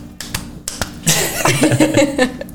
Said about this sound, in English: So we gotta hit that one time. She's clapping for herself too.